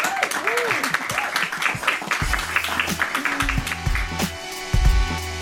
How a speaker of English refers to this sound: Can we just have a round of applause for our panellists? Thank you.